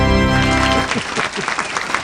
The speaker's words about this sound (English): That's why I love the applause. I'll play it when I walk in to see my kids. Yeah. I'll just play my own applause.